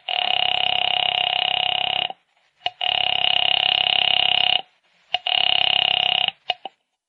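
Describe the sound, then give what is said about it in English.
A telephone line rings three times after a number is dialed to check the time, each long buzzing ring lasting about two seconds, separated by short pauses with faint clicks, loud with no voices. “knowing how foolish it was, knowing it, went to the phone and dialed.”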